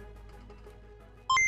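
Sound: computer beeping sound effect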